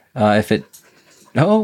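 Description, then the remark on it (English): A dog that has just run into the room lets out two short, whiny vocal bursts with soft breathy panting in the quiet gap between them. “A dog just ran into the room, which is awesome here.”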